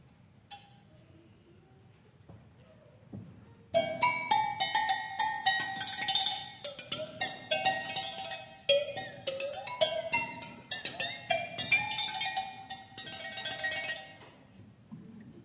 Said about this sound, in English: There are these cowbells. These are agogo bells. All of us have them. These are African bells, and they make a cowbell kind of sound, but watch what happens.